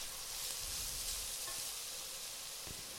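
Two deciliters of white wine poured into a hot pot with onion pieces and tomato paste set off a steady, bright sizzle that holds loud for a few seconds, with faint low bubbling and clinks underneath and no talking.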